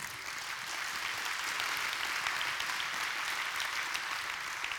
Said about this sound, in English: And it was so, that's worth a hand clap, by the way.